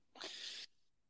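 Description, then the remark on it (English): A single sharp, loud sneeze, bursting out in about half a second with a hissy, breathy spray and nothing else around it. “Also, before we get back into what we were talking about, sneezed naked.”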